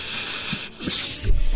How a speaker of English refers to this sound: I was like, why balloon? Am I hearing a balloon? There's no one has a balloon, and then I looked up and he had a balloon.